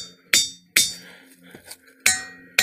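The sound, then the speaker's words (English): A hammer strikes large boulder-size rocks four times at irregular intervals, each sharp metallic strike ringing out with a bell-like tone that decays slowly; the second pair sounds higher and brighter than the first. “They make tones when hit with a hammer.”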